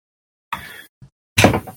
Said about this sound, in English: Fuck, I knocked over my Sam figure.